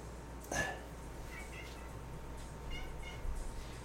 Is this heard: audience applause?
no